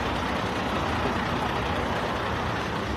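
A steady, loud roar of heavy highway traffic, with big trucks rumbling by and blending into a continuous wash of engine and tire noise, with no voices.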